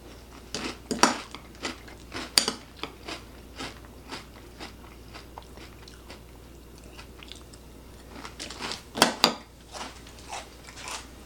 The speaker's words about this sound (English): And you can hear that, it's still crunchy after sitting in milk.